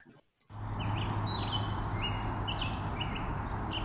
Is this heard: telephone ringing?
no